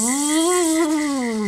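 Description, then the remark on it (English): A male mole cricket's call: one steady, loud, buzzing trill with a low, even pitch that rises and falls slightly, lasting throughout with no voices. “And the male mole crickets, they make a special burrow, and it helps them sound even louder.”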